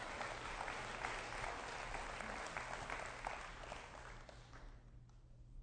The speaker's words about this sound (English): He made a good effort. He lost. Give him a big hand clap as he goes back to his seat.